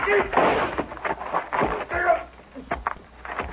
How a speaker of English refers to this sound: Rifle went off when I knocked it aside.